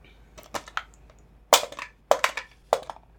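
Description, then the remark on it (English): Dice clatter across a hard surface in several quick bursts of sharp, rattling clicks, with louder knocks partway through and brief pauses between rolls. No one speaks. “All right, ladies, let's roll some dice and talk about these variant Eidolons.”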